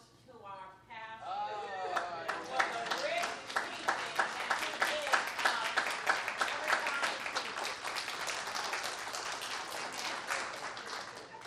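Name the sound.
audience clapping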